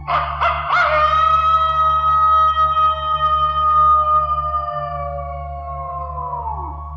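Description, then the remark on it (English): A single long wolf howl holds steady for several seconds before sliding down in pitch at the end, loud, over a low constant hum with no talking. “And legend has it the Michigan Dogman is an extra large wolf, capable of rearing up on its hind legs to show off its humanoid torso, stare at you with blue or amber eyes, and unleash a frighteningly human scream.”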